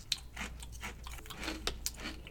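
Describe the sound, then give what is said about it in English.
Several sharp, crackly crunches in an irregular rhythm as someone chews a crisp Deep River sweet Maui onion potato chip, with bright bursts of brittle noise and no talking. “The Deep River, sweet Maui onion, compliments of Chimmer.”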